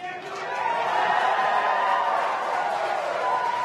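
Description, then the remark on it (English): Loud, sustained cheering from a crowd of people in a room in Hawthorne as they watch the Dragon capsule separate from the Falcon 9 rocket in a launch escape, a dense wash of voices shouting and whooping together that swells early and holds steady throughout. “And you can hear some really loud cheering in the room.”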